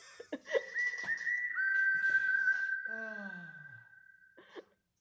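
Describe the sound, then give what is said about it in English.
A person whistles one long, steady, fairly loud note that holds for several seconds, with a brief breathy vocal sound sliding downward underneath near the end. “Whistle, please.”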